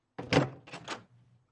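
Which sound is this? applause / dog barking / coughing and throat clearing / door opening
door opening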